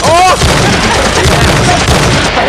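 explosion sound effects

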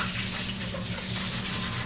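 running tap water

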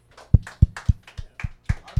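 audience clapping

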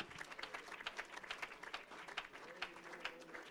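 audience clapping hands

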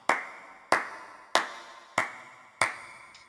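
applause

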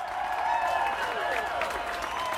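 crowd applauding wildly

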